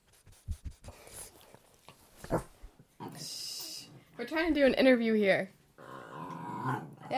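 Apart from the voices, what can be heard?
dogs whimpering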